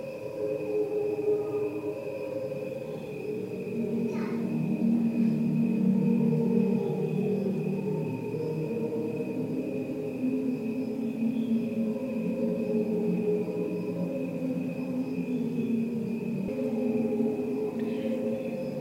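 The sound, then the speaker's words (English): Cricket chirping slowed far down into a smooth, continuous wash of layered humming tones, almost choir-like, holding steady at moderate loudness for the whole stretch with no voices. “This is just the sound, that cricket sound we hear, we're so used to, slowed right down.”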